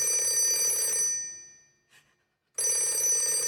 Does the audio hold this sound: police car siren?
no